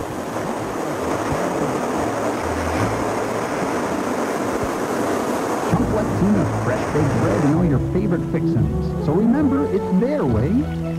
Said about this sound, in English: Emergency vehicle coming by.